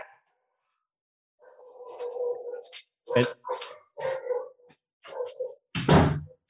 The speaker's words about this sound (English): Excuse me. I've got to shut this door. My dogs are going crazy.